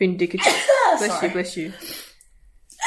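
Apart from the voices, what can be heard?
sneeze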